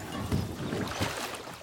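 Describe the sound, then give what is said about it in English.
Kayak oars splash through water in a steady rhythm as people paddle kayaks, two soft strokes sounding over a continuous low wash of water and wind, with no voices. “Their oars splash rhythmically.”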